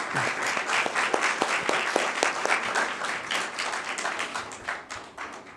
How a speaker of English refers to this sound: So if we could give him a round of applause, that'd be great.